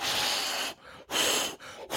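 Breathy rushes of hot air blown into cupped hands, three bursts in quick succession, the first long and the others shorter, with brief pauses between them and no talking.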